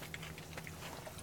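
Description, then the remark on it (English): Someone bites into a crunchy ice cream bar of caramel-flavored ice cream with caramel bourbon and crispy bits dipped in milk chocolate, making a faint, brittle crackle with one sharper snap midway, followed by soft chewing crunches over a low steady hum. “No one took a bite yet. That was cool. It's crunchy.”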